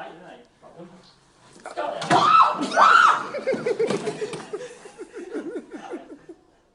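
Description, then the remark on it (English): A man lets out two loud, high-pitched screams of fright in quick succession after a bird flies into the room and hits a window, then trails off into a run of shaky, breathless laughing yelps. “That wasn't my wife screaming, guys. That wasn't my kid, that was me.”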